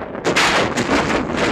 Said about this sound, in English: There's a similar opening sequence in Red Skies of Montana from 1952. A bolt of lightning ignites a forest fire.